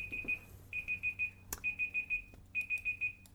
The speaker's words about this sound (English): Okay, my timer just went off to let me know that my time is coming to a close. So thank you for that timer.